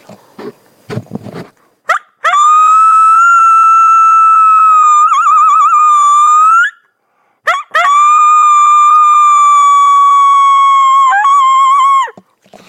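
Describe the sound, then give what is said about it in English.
A person imitates a single, non-aggressive lone wolf howl: two long, loud, sustained howls at a steady mid-high pitch, each wavering slightly before trailing off, preceded by a few brief rustling noises. “Single lone howls are the number one response you get.”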